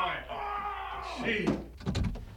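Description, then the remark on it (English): A door opens with a steady mechanical whirring hum, followed by a couple of solid thuds and clunks as it finishes moving, moderately loud. “Open just the open door. The door, will you?”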